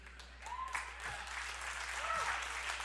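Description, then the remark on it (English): A crowd applauds with steady, dense clapping that fills the whole stretch, a sustained wash of many hands, with a few faint cheers or whistles rising over the noise. “Now, I hope you're clapping for God.”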